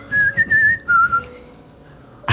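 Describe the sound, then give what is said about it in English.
A bright, lively, jaunty tune whistled, with quick, bouncy notes that rise and dip before trailing off into a short pause and a brief bump at the end. “Unless you want to keep whistling, of course.”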